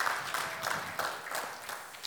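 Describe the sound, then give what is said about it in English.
An audience claps together as a clap offering to the Lord, producing a dense, steady crackle of many hands with small surges in intensity, moderately loud and with no voices over it. “Give the Lord a great clap offering, amen.”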